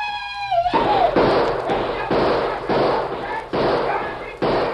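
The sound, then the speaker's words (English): A rapid string of about eight loud gunshots from guns fired as fast as possible, roughly two per second, with shouting mixed in. A high, drawn-out tonal cry comes just before the shooting begins. “Start firing as fast as you can.”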